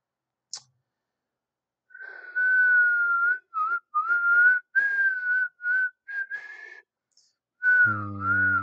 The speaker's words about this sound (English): I finally figured out how to whistle again. It's really weird.